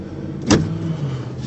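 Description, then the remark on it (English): A car engine hums steadily at a busy gas station by a roundabout in the morning, while a short, sharp whoosh cuts through about a third of the way in, like another vehicle moving past. No one speaks. “It's just a little gas station I stop at every morning. There's usually two cars. This place is full.”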